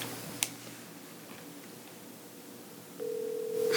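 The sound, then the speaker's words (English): A soft click, a stretch of quiet line hiss, then a steady electronic ringing tone starts near the end, a phone call ringing out over speakerphone. No one speaks. “Yeah, put it on speaker and if he doesn't answer, my phone accidentally we'll leave him a message”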